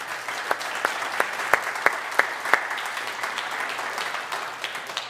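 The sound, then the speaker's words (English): A church audience applauds the volunteers who serve the children there, a dense, steady wash of many hands clapping with a few sharper, louder claps standing out, sustained for several seconds with no voices. “Anybody who's in here who volunteers and pours into kids at this church, let's give these people a round of applause.”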